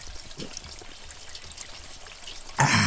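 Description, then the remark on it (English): Water trickles and splashes steadily with a soft, bubbly patter, then a loud rush surges in near the end as it begins pouring heavily, flooding a town with rising water. No voices are heard. “Water ain't getting any less high in here.”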